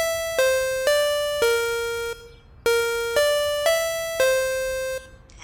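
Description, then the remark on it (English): A door buzzer at the entrance of an abandoned warehouse rings as an electronic chime: a short run of bright, stepped tones, a brief pause, then the tune repeats with four clear notes. Loud and alone, with no talking. “Oh, nope, found the buzzer.”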